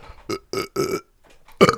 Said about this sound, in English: Solid burp. Thank you.